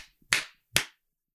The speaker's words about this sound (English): on three, clap three times by your microphone.